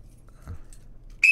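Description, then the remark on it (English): A person gives a sharp, high-pitched whistle right at the end, loud, cutting in abruptly after a stretch of quiet low rumbling with no talking. “And that's the Jew whistle.”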